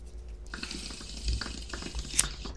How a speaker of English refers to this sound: I love the sound of the water. Mine has water in it.